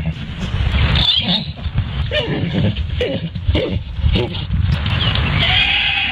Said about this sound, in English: Listen to mini pony mating again.